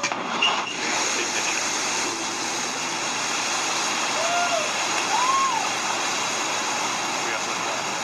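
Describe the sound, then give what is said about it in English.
The New Shepard rocket's engines roar at liftoff as it clears the tower, carrying its first human crew on the way to space: a dense, steady rushing thunder that holds at full strength for the whole stretch, with a couple of faint whistling tones rising and falling midway. “We have liftoff. Shepard cleared the tower.”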